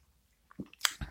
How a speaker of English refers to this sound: I saved the first sip for you. So good.